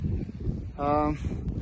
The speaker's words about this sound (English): Hello everyone, welcome to Camp 2. 6,536 meters. It's very windy here.